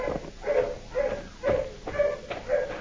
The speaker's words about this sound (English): The road cuts through this swamp just a few feet ahead. Dogs are getting closer, Rocky.